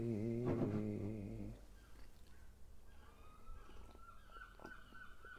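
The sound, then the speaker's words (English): Seagulls call with a loud, harmonic squawk at the start, then fainter cries and chirps continue in the background amid outdoor ambience. “Except for our seagulls.”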